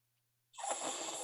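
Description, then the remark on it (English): A voice imitates a snore: after a brief silence, one harsh, breathy rasp starts abruptly and holds steady, fairly loud. “Yeah, I snore.”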